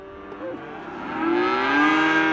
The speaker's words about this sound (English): People in town in Miles City, they know when the fall comes because they can hear calves bawling all across the city.